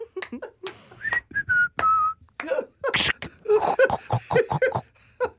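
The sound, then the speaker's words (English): A person whistles a short run of clear, sustained notes in the middle, a brief snatch of melody, with someone talking before and after it. “He'd just walk around whistling, looking for a lion red.”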